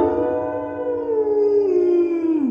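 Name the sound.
dog howling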